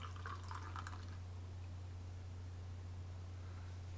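Beer glugs and splashes from a bottle into a glass for about a second, then settles into a faint fizzing hiss over a steady low electrical hum. No one speaks.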